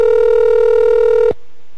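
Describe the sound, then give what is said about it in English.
A cell phone ringing tone sounds loudly for over a second, a steady electronic beep with harmonics, then cuts off abruptly into near silence. “I'm calling you, your cell phone.”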